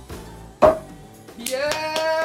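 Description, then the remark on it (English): One sharp hand clap, then after a short pause several more claps at a steady, even rhythm while a voice speaks excitedly over them. “I'm clapping because it's fucking over!”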